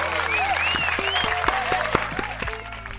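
An applause sound effect: steady, dense applause from a large crowd, loud and continuous throughout, with scattered whistles and cheering voices rising above the clapping.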